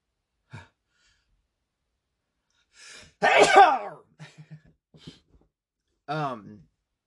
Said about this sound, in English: oh shit, I gotta sneeze.